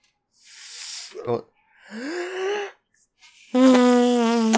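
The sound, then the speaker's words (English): A person blows a lip-made fart noise: breathy puffs and a short rising sputter, then a loud, steady low buzzing raspberry that holds for about a second. “It's not hand farting. It's with your lips.”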